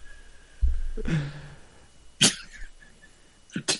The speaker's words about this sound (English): Not only did he cough the really loud, not even look away from the mic either. The motherfucker straight coughed in his mic.